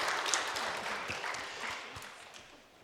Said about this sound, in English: And another big round of applause.